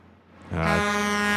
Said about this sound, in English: It's just delayed. It was a Doppler-affected truck horn.